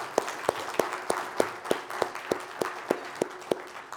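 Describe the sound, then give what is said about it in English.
A church audience applauds a father's newborn child, with a steady, evenly spaced clap standing out above a softer wash of scattered clapping. No one speaks over it. “We applaud what the Lord's given you, brother.”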